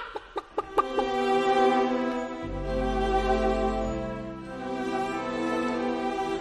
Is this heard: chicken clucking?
yes